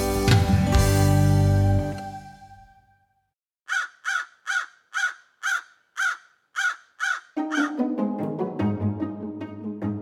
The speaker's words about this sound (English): No, you're not misunderstanding what you're hearing. It is a crow.